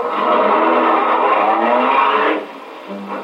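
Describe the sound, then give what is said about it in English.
A car pulls away in the rain, its engine and tires giving a loud, steady roar for a couple of seconds before the sound drops off abruptly to a low hum. No one speaks. “Let's get back in the car.”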